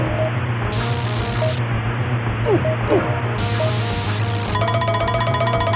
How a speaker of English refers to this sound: And it's like, you know, what is it that this about this static that just makes it immediately read to our brains as like, yes, that is clearly water.